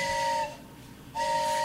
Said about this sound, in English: Stop! Oh, my God! It's just a train, okay? No worries. Well, just wait. I really like trains. This one's pretty long.